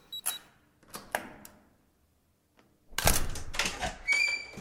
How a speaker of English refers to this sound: It has a key code on the door. Oh, please. Door open.